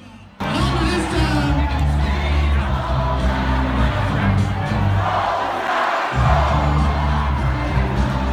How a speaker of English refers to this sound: We're starting to cheer. We're really sensing a win. And when CNN called it, the room just erupted in cheers.